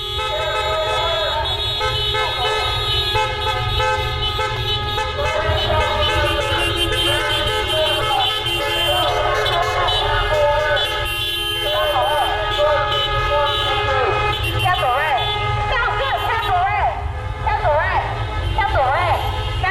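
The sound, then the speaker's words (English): A dense chorus of car horns honks continuously for the whole stretch, many overlapping tones blaring at once over a low rumble of traffic, loud, during a May Day car caravan in Long Beach. “It seems like it's adapted from like March into a car caravan, and it went really well.”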